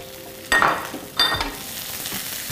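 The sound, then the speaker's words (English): Red, green and yellow bell peppers and onion sizzle steadily in a pan, with two louder surges of crackling hiss as they are gently stirred, each carrying a brief, high metallic scrape. “Give it a gentle, just a gentle stir, you know. Don't overcook the bell peppers and all.”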